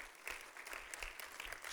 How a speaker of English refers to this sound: Brings her there to them, and yeah, amen, that is worthy of a hand clap, amen.